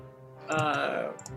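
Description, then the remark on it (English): A few quick, light clicks of new Norse Foundry dice tumbling across a tabletop on a first roll that lands a natural 20, partly buried under an excited voice that rises loudly over the clatter. “This is the first roll from the new Norse Foundry Dat Dice, and it's a nat 20.”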